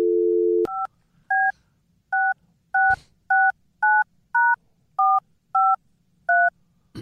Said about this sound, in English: you can dial the phone number 877-MICKEY. And I thought we'd make a phone call